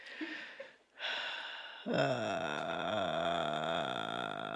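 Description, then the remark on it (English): A person imitates the loud breathing another person makes while lying down going to sleep: a breathy, noisy inhale, a short pause, then a long, strained, groaning exhale with a voiced, rasping tone that swells and wavers. “he starts doing this like noise where I hear every inhale and every exhale”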